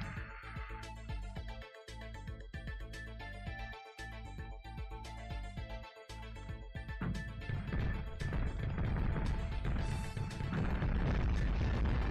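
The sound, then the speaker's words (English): Video game explosion sound effects over a steady musical backing, with repeated sharp blasts early on, then a loud, continuous rumbling barrage of booms so loud it sounds clipped and distorted. “Those explosions.”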